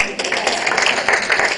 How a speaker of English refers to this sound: So, we should clap for Rolai, Ohio, too.